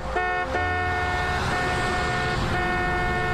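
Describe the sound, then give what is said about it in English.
Many car horns in Sydney blare together in loud, sustained, overlapping tones as drivers honk along to the birthday song, shifting pitch every so often, with steady traffic noise underneath and no talking. “Where Fitzy and Whipper told people to honk along to the song Happy Birthday.”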